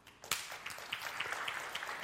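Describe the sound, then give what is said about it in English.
A crowd breaks into applause after a quiet start, clapping to show they have never seen the TV show This Is Us, many hands in a dense, steady patter that stays fairly loud and even to the end. “So if you will you clap if you've never seen the show?”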